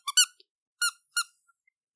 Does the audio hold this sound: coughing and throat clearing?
no